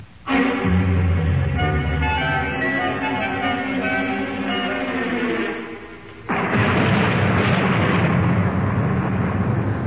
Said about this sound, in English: First there's this dreadful storm, and then the Reverend Patton's expected almost any moment.